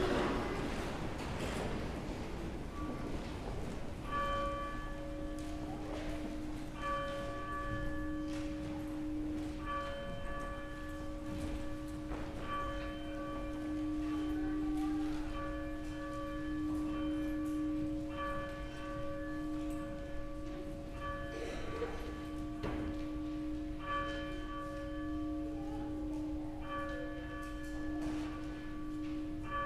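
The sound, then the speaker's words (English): A church's mercy bell tolls steadily to call the audience to morning worship, struck about every two and a half seconds with long ringing overtones that blend together, fairly loud over quiet ambience, with no talking. “Please stand, and the mercy bell will call us to worship.”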